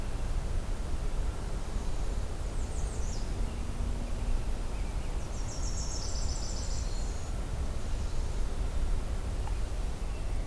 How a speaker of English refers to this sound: Another Nashville warbler.